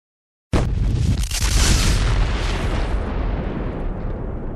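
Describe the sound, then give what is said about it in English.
A sudden, loud explosion bursts in after a moment of silence, then a heavy rumbling crash rolls on and slowly fades, broad with no voices, as a charge is detonated in the hallway of a building, shaking it. “You hear a rending crash, an explosion that ripples out.”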